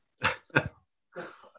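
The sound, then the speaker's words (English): A dog makes two quick yips followed by a softer, grumbling vocalization while trying to play with a squeaky toy. “Sorry for the squeaking, folks. No. My dog is trying to play with a toy.”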